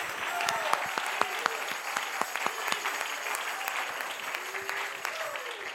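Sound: audience clapping hands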